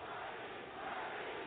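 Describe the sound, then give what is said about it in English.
A large crowd of protesters in an arena roars and shouts together, chanting "Bernie", in a dense, continuous wall of voices, steady and loud throughout with no single speaker standing out. “They're now shouting, Bernie.”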